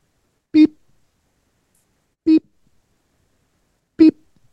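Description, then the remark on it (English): Three short, mid-pitched beeps ring out one at a time, evenly spaced about a second and a half apart, each clear and fairly loud against otherwise silent air. “You hear beep.”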